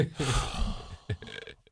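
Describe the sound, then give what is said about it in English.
A voice imitates breathing with a loud, exaggerated drawn-out gasp, followed by a few short, choppy breathy bursts that trail off. “I'm breathing. They all breathe, right?”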